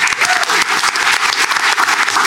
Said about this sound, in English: A round of applause